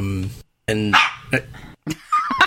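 A dog barks several times, with loud, irregular bursts separated by short pauses, some of them drawn out and whiny.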